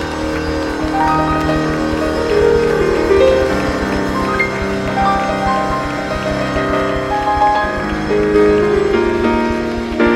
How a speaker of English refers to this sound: Let's clap hands for Jesus one more time. Clap, clap, clap, clap, clap, clap, clap hands for Jesus one more time.